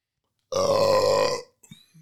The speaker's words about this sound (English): That's why I burped away from the microphone.